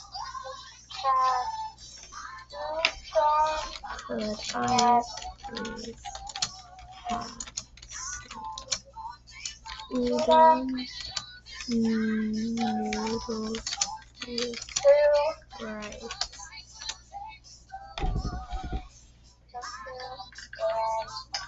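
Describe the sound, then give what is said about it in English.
Rapid, irregular clicking of fingers typing fast on a computer keyboard, running through the whole stretch while muffled voices talk quietly in the background. “I feel bad because I'm always like typing so fast and then I have so many questions and they can't type half as fast as me.”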